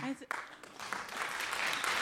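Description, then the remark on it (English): A brief voice gives way to an audience breaking into applause, a dense, hissy wash of many hands clapping that swells quickly and holds steady at a fairly loud level. “I don't need applause.”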